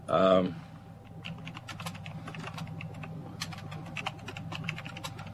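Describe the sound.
Steady, rapid clicking of computer keys being typed on, moderately loud, following a brief harmonic voice sound at the very start.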